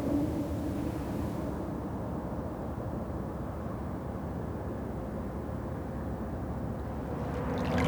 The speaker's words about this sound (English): The sound of the water is so soothing. It always has been. It reminds me of where I grew up.